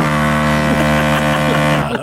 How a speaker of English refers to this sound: Oh, good honk. That was a good honk. Where'd you find that honk? Send me that honk. Where are you getting those honks?